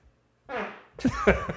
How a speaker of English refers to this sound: Yes, in the form of farts.